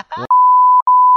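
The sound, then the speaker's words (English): A clipped fragment of a voice gives way to a loud, steady, mid-pitched censor bleep that holds for about a second, interrupted by one brief break before resuming. “Good luck trying to figure out how to bleep.”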